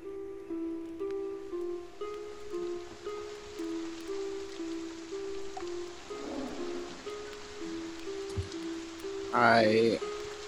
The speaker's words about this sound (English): As you're walking to the opposite side of the camp, you begin to feel small drops of rain begin to fall.